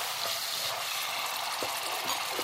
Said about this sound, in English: It's sizzling so loud. So let's stir the peas into the oil, let it cook.